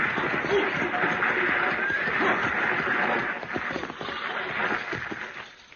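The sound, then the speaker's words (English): A six-horse stagecoach team thunders along with a dense, continuous clatter of hooves and rumbling noise, loud, easing slightly toward the end, with a brief whinny mixed in. “Driving a six-horse hitch ought to keep him awake.”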